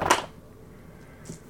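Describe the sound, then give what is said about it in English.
Dice hit a hard surface with one sharp clack, followed by a quiet pause and a couple of faint, light ticks as they settle. No one speaks. “Your dice hate you.”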